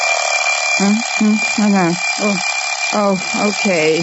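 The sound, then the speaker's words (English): An alarm clock rings loudly and continuously from start to finish, its bright metallic clatter steady throughout, while a person talks over it in short bursts. “Darned alarm clock.”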